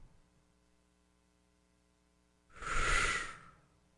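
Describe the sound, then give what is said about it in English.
A single breathy whoosh swells up out of a faint background hum, rises to a loud peak, then fades away over about a second. No one speaks. “Was that an editorial whoosh, or was that actually written down in the poem?”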